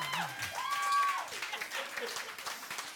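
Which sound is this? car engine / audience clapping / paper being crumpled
audience clapping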